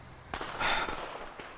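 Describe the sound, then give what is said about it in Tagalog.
Fireworks at a fireworks show pop and burst: a sharp crack, then a louder crackling blast with a hissing tail, and one more crack shortly after. There is no talking. “Sige, tapusin na natin fireworks show.”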